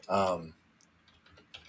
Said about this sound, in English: As I'm typing … into YouTube.